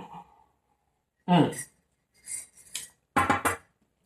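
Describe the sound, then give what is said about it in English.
A spoon stirs water in a cup, making a few short bursts of clinking and scraping against the sides, separated by brief pauses. “I'm stirring my, for those who are listening to the podcast, I'm stirring my water again.”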